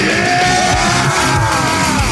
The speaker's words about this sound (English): Get it out! Get it out of your system, all of us! Woo! The count of three, we all yell. One, two, three. Oh, that felt good, actually.